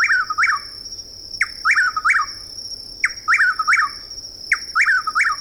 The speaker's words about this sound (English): The same evening, in a southeastern woodland, we hear the loud calls of a chuckwill's widow.